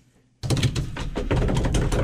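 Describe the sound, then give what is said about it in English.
An improvised drum roll: a rapid, steady flurry of loud knocking taps on a hard surface starts abruptly after a brief quiet moment and keeps going without any talking. “I feel like we need a drum roll.”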